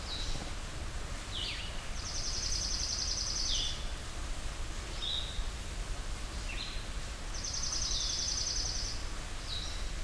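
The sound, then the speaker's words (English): A blue-headed vireo sings softly in two bouts at Hector Falls, each mixing short slurred notes with a rapid trilled phrase, over a steady outdoor hiss, with no talking. “Blue-headed Vireo”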